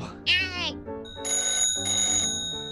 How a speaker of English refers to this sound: Shh! I think I hear the phone ringing. You don't bark at the phone, you nitwit. You answer it.